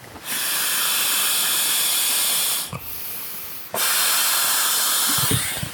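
Steady, breathy rushes of air as someone blows up a Climate Static V2 sleeping pad by mouth in long bursts, a loud first blow, a brief softer one, then another strong sustained blow, with faint thumps and rustling underneath.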